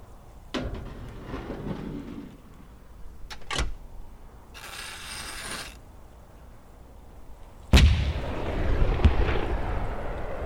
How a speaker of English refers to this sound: History's first atomic artillery shell explosion, Shot Grable, occurred on the 25th of May, 1953. Atomic Annie's 15-kiloton shell burst with precision accuracy over the designated target area, about 500 feet above the ground.